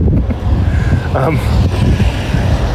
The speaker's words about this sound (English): It was just, it's windy, and it's cold. I mean, like, it's actually cold out.